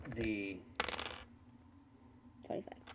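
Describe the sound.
Dice clatter across a hard tabletop in a quick, rattling burst of hits, preceded by a short hummed voice, with a softer second clatter near the end.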